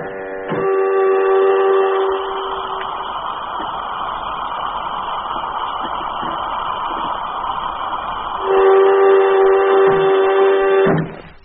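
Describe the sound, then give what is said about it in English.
A spaceship airlock cycles: a loud, steady buzzing tone sounds, gives way to several seconds of rushing air hiss, then the harmonic buzz returns before cutting off abruptly. “Airlock, contact.”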